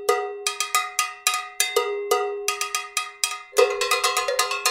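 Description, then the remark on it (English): Three people jam deep polyrhythms on cowbells: bright, ringing strikes in interlocking, uneven rhythms, the clanks overlapping into a dense metallic clatter that grows busier and louder toward the end. No one speaks. “There's this video I found online of these three guys jamming on cowbells, and it's unbelievably fascinating.”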